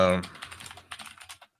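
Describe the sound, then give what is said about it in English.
Rapid clicky keystrokes on a mechanical keyboard rattle off in an uneven burst of sharp taps, following a brief trailing bit of voice at the start. “Oh my God, the fucking keyboard. The clicky clacky returns.”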